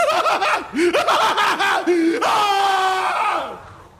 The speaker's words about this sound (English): A round of applause there